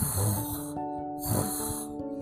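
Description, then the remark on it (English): A person imitates snoring with two drawn-out, rasping snorts separated by a short pause, while steady soft tones hum in the background. “He started to snore. Aapke papa kya snore karte hain?”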